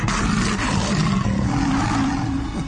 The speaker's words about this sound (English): And you may want to cover your ears. Because I'm telling you what, the lion of the tribe of Judah is roaring.